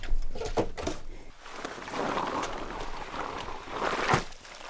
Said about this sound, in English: Heavy, wet snow, a kind of slush, was falling in Juneau on Saturday night. It's the kind of snow you can hear hitting the ground with a splash.